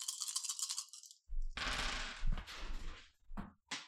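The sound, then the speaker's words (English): Five dice rattle in a cup, then spill out in a clattering tumble across a hard surface, followed by a few separate knocks as one die falls and bounces away. Fairly loud. “1 die fell, and it made a dog panic. So you got some sounds there.”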